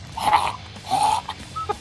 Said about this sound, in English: This is a California cockatiel.